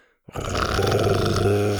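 After a short silence, a loud, deep growl from Buck, a T-Rex with a big red head, bursts in and holds steady, a rough, rumbling roar with a low throaty drone running under it until the end.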